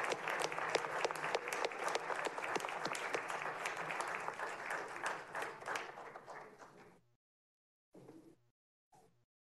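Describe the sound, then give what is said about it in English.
A city council meeting audience applauds Director Walker steadily for about seven seconds, dense overlapping claps that taper off, followed by silence and a couple of brief faint sounds. “And let's give Director Walker one more round of applause.”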